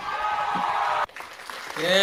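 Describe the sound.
A burst of hand clapping with some cheering fills the first second, then cuts off abruptly as voices start talking and a voice rises toward the end.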